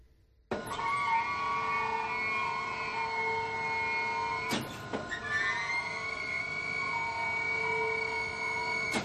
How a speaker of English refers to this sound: I think it's a car crusher in a junkyard. Yeah, I think you're right. It's called hydraulic pump. You can hear glass breaking, so.